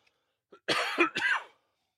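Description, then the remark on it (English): A harsh bout of coughing and throat clearing, a small catch followed by two or three raspy bursts in quick succession, with no talking. “So unprofessional. I'm going to get a cough button at some point.”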